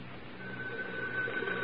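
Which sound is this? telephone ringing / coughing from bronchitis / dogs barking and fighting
telephone ringing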